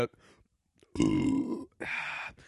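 A loud, close burp rumbles out for about a second, followed by a shorter, higher, rasping burst; quiet moments surround them and no one speaks.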